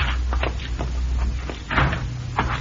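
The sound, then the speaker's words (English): A back door creaks and thumps shut, with a couple of sharp wooden knocks and latch clicks over a low steady hum; no one speaks. “Let's use the back door, Cisco.”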